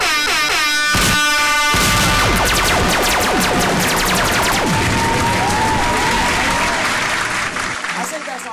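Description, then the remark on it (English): A loud clapping sound effect, a dense flurry of rapid claps layered over blaring air-horn blasts and sliding tones, continuing steadily for several seconds before tapering slightly at the end. “Man, why were the fucking claps and shit”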